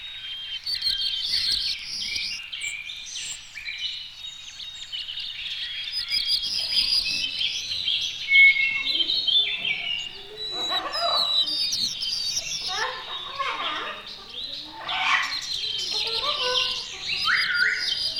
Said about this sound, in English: These white crown sparrows begin their pensive minor strains with clear notes, while closing notes are rather wheezy.